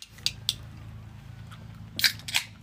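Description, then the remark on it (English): Crisp cracks as a cap twists loose on a bottle of pop, then two short fizzy bursts of hissing near the end, over a low steady background hum. “You want a sip of pop? Yeah. Looking to get... Let me open it for you.”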